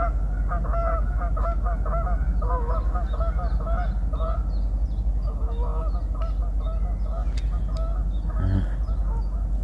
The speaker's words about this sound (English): There you go, the geese.